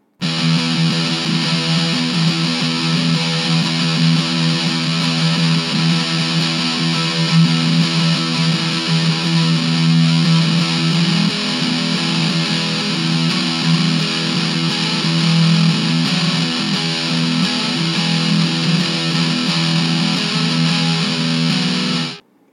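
A heavily distorted electric guitar with a maple neck and fingerboard, played through its bridge humbucker pickup, plays a steady, sustained riff with a thick, biting tone, loud and continuous for over twenty seconds with no voices, ending abruptly.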